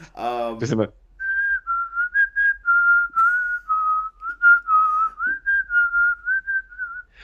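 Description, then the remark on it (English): A brief vocal burst, then a person whistles a steady, tuneful melody for about six seconds, the notes gliding and stepping in a slow rhythm with short breaks between phrases. “when you said that Kill Bill part, I really wish I had the whistle scene in there”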